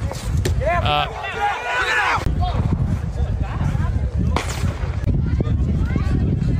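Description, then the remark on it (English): A few sharp gunshots crack out at a Little League baseball game of very young kids, cutting through steady crowd noise and overlapping voices, with a raised, shouting voice near the start. “Gunshots.”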